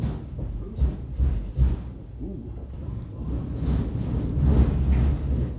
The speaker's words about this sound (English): It's an old Milwaukee Road, World War I-era passenger station that the club has been using for about 87 years. And yes, trains pass overhead.